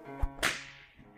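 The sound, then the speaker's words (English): A single sharp whip crack snaps out loudly after a soft low thump, its bright burst trailing off in a brief echoing decay; a coach driver cracks his big whip over four small horses running abreast as the coach sets off. No voices are heard. “Then our driver, whose wide linen drawers covered the whole front of the box seat, a gotza, they call them, cracked his big whip over his four small horses, which ran abreast, and we set off on our journey.”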